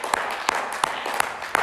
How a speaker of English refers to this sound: You want that, clap your hands this morning.